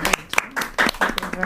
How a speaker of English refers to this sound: I'll give you a round of applause for it.